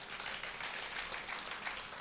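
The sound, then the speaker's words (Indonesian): An audience applauds together for God, a dense, steady wash of many hands clapping at once that holds at an even level throughout, with no voices standing out. “Boleh tepuk tangan bagi Tuhan.”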